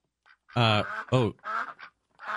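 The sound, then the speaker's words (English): Ducks quack in a quick, irregular run of harsh, nasal calls, about five bursts close together, fairly loud, with a couple of softer calls between the stronger ones. “This may sound like a joke, but a troop of special Chinese ducks is waiting to be deployed to Pakistan to fight locusts.”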